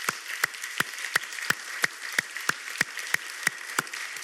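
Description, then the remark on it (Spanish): An audience applauding to honour people who serve in their church, with a steady rhythm of about a dozen sharp, evenly spaced claps standing out over a continuous bed of lighter clapping. No one speaks. “Así que vamos a honrarles a ellos con un fuerte aplauso.”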